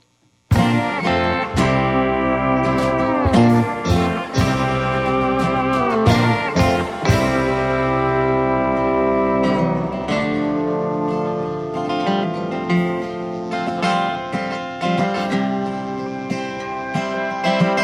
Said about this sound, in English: And you guys want to play another song real quick? Let's do it. All right, cool. We're ready to go.